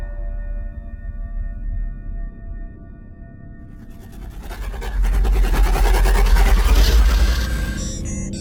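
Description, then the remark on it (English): A ship's steady low engine hum drones for a few seconds, then erupts into loud, harsh grinding and rattling as the port engine fails completely, roaring for several seconds before easing slightly. No one speaks. “Damn it, the port engine has failed completely.”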